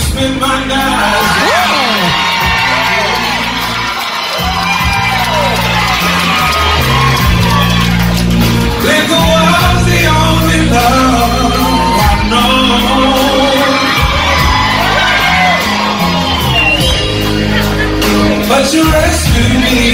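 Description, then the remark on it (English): A packed bar crowd on Broadway whoops, shouts and cheers loudly and continuously while one of the bar's security guards sings a song on stage with a live band, the voices and music blending into a dense, energetic roar. “He went up on the stage, sang …. The crowd loved it.”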